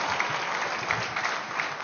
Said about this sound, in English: You are going to clap? I wasn't sure.